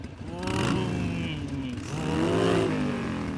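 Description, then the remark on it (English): A motorcycle with a standard stock exhaust revs up twice in close succession. The exhaust note rises and falls in pitch, loud, with a steady idle rumble between the revs. “For example, this is your standard motorcycle exhaust.”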